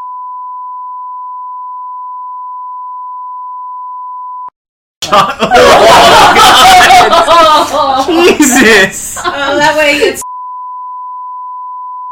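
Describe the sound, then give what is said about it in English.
A loud, steady censor beep tone plays for several seconds, breaks off for excited, laughing speech, then returns to cover the end. “My favorite part is like putting a huge beep sound effect over the majority of what she says, so it's like totally intelligible.”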